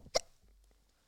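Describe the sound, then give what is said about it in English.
A single sharp hiccup from a female pops out near the start, a brief bright burst that quickly fades into quiet. “Oh, she's got the hiccups.”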